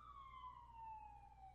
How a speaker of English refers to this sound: So I got a police car. Hold on, guys.